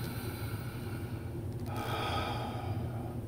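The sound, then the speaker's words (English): Steady breathing through the nose by a person sitting with good posture, a slow inhale shifting into a longer, airy exhale with a soft nasal rush, heard alone without any talking. “And I just wanna take a moment and just clear my mind and drop my shoulders, be at ease and sit with good posture and breathing in and out of the nose.”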